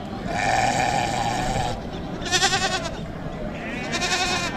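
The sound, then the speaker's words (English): Goats bleat repeatedly in wavering, harmonic cries over a busy crowd murmur at Bisle Livestock Market in Kajiado County, south of Nairobi, Kenya, where goats, sheep and cattle are sold, with several animals calling in overlapping bursts. “We are at Bisle Livestock Market, located in Kajiado County, south of Kenya's capital, Nairobi. Here, apart from selling goats, sheep and cattle, farmers are also benefiting from Mbuzi Moja Afya Bora program.”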